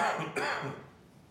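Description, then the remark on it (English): A person in Albuquerque with a worsening cough clears their throat and coughs in two quick, rough bursts that fade out within about a second, with no talking over it. “I brought a cough to Albuquerque, and it's gotten worse throughout the drinking.”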